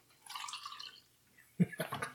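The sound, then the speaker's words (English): A drink is poured into a glass close to the mic: a short, steady splashing stream, followed by a few louder liquid gurgles and knocks as the pour tapers off. “Oh, you can hear the pour on the mic.”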